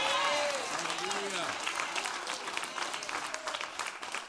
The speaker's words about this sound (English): I feel like online people are clapping better. I can hear them more than people in here.